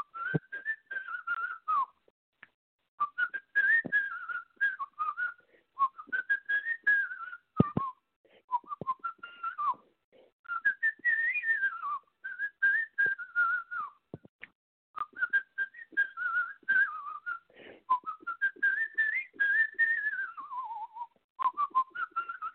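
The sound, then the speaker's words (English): A man whistles his own single, a melodic tune lasting over twenty seconds, phrases rising and falling in smooth arcs with brief pauses between them, clear with no talking. “He's whistling the song too”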